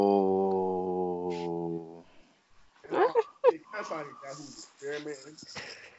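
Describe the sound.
A dog lets out a steady, drawn-out whine lasting about two seconds, fairly loud, followed by people talking.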